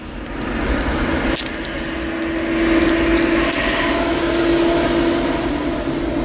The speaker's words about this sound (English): Traffic, y'all. Y'all know I'm in the car and y'all in the car with me.